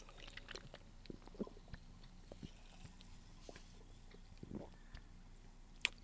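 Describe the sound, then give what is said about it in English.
Quiet mouth sounds of someone sipping a sour watermelon Ghost Energy drink: small wet sips and swallows with soft clicks and smacks, scattered irregularly across a few seconds. “I want you to take, like, a gulp and let it sit on your tongue for a minute”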